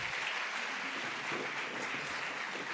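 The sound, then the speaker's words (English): Steady crowd applause fills the space, a dense, continuous patter of many hands clapping at an even level throughout, with no voices standing out, as an audience welcomes guests onto a stage. “Yep, clap it up as they come.”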